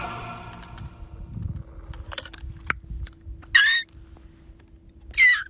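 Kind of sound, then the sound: vocal imitation, person imitating bird calls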